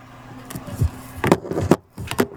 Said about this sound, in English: I don't like that static sound. Even though talking to the mic is kind of relaxing, but.